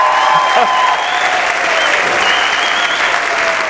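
Steady, dense applause from a large audience, many hands clapping at once in a continuous crackling wash with no pauses, holding an even, fairly loud level throughout.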